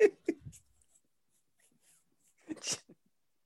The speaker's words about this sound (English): A dog.